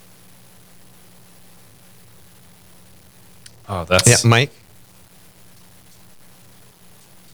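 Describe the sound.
A steady, faint hiss of phone line static fills a mostly dead connection after the line drops, broken only by a brief burst of a voice speaking in the middle before the empty hiss returns.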